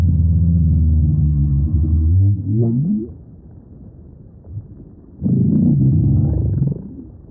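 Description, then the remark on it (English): Deep, low underwater calls of northern right whales in Cape Cod Bay: a long moaning tone that rises and warbles upward, a quieter murmuring pause, then another rumbling, groaning call swelling loudly before fading. “We leave you this week with voices of the northern right whale in Cape Cod Bay.”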